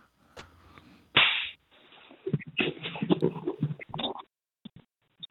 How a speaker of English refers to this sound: Slap your fucking ass. Don't be a bitch about it. Slap it hard. Count out to five.